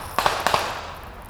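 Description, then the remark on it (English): Fireworks set off by people pop outside in two quick pairs of sharp cracks, each followed by a short echoing tail, with no voices in between. “I guess people are still lighting off fireworks over here.”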